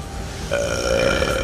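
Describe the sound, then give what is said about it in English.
A loud, drawn-out burp rumbles, low and throaty with a wavering tone, lasting about a second with no talking around it. “Then they heard a huge burp.”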